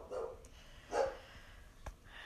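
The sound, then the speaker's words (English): A dog barks twice, about a second apart, sounding muffled, with a few faint clicks and knocks in otherwise quiet surroundings. “I lost my spot here because my dog is barking.”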